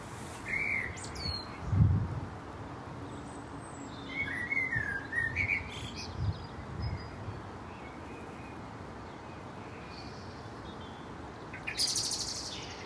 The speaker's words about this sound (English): Well, that was the gorgeous, rather sultry tones of a blackbird. And they are just beginning to sing. We're in the middle of February right now, so recording this.